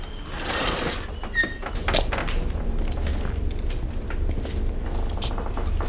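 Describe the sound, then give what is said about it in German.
A woman knocks on the door of cabin 779: a few sharp wooden raps near the start, over a low, steady background rumble, with a brief squeak just before them and no one speaking. “Sie klopft.”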